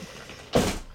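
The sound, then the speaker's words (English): A short, sudden clatter as a cat knocks something over, one burst lasting about a quarter second, moderately loud, with no one speaking. “Well, my cat just knocked over something.”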